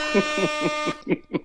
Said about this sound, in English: Let's get some air horns.